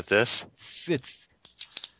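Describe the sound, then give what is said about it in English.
A quick run of sharp plastic clicks, five or six in an irregular burst, follows a short vocal sound and a stretch of breathy hiss as someone clicks a pen drive. “Oh, I think I was clicking something. My pen drive.”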